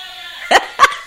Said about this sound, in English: And Poco barking. He's singing too.